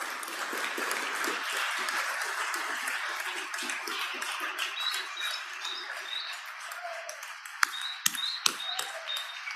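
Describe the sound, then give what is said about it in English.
A crowd applauds steadily with dense, overlapping clapping that thins out in the last few seconds, where a few short, high chirping tones and sharp claps stand out, applauding the House staff and the members' families and supporters at the Capitol. “And if we give a quick round of applause for the staff and for all of your families and supporters here.”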